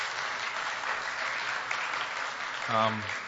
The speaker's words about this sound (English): I wasn't expecting applause. Thank you. It is exciting, though.